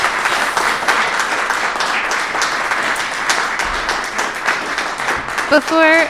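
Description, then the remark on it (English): A live audience at a City of Moab mayoral candidates' forum applauds the six candidates with dense, steady clapping for several seconds, accompanied by a few whoops and murmurs, before a brief tonal whistle or cheer rises at the very end. “Can we have a small round of applause from our live audience?”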